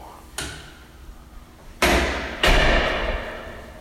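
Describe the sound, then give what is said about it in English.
A door in a dark hotel stairwell opens onto a dark hallway with a light click followed by two heavy thuds about half a second apart, each trailing off in an echo, with no one speaking. “That door opened, but it just led into a dark hallway.”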